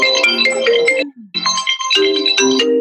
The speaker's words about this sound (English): Ugh. Stop. Oh, see, it keeps ringing even on the computer. Sorry about that.